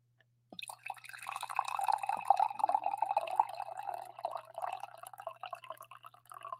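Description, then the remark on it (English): Coffee pours steadily into a cup, a continuous bubbling, trickling stream that starts abruptly and runs without pause, with no voices over it. “sometimes I wait a little bit, but I need the coffee right off the rip as well.”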